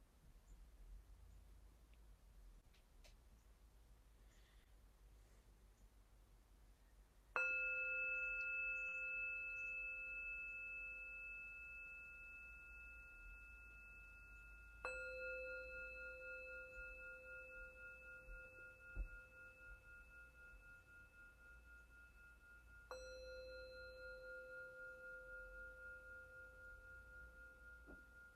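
A meditation bell is struck three times at the start of a seated meditation practice, each strike ringing out with steady, layered harmonic tones that slowly fade, over a quiet low background hum; no one speaks.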